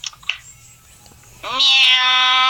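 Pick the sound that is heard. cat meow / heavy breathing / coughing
cat meow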